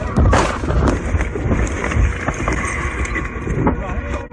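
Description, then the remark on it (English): A car crash as a car going through a green light is T-boned: a heavy, booming impact, then another thud about two seconds later, with rough rumbling noise throughout and muffled voices underneath. “He had the green light, as far as I know, and he got T-boned.”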